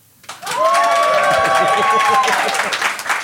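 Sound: audience applauding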